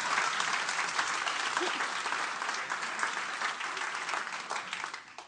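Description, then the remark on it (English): An audience at a sermon bursts into sustained applause at the speaker's request, a dense wash of many hands clapping at once that holds steady for several seconds before tapering off at the end. “Come on, just clap your hands so I feel better about what I just said.”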